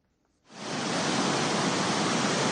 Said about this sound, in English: balances precariously on a slippery rock as water gushes around him and the three foreigners he's leading on a hike. Below, the water slices through the cliff, making way for a spectacular view of the forest.